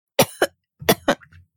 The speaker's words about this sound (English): Oh my gosh. Coughing so soon.